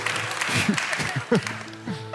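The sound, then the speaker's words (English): An audience claps together, a steady wash of many hands with a few voices calling out over it. “You're clapping, I'm talking to you.”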